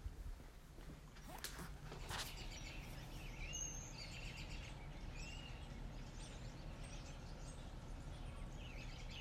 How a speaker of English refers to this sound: Hear that? That's harmony. That's peace. The birds are singing because the weather's changing and they gotta eat. And I'm looking at robins on the grass right now in Central Park from a foxhole.